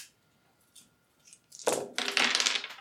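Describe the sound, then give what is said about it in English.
Five dice, rolled for a wits roll, clatter and rattle across a hard table in a loud burst of overlapping clicks lasting about a second, after a near-silent pause; no one speaks. “So wits is 5 dice.”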